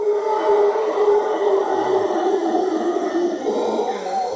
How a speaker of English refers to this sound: There's a howler monkey, I think.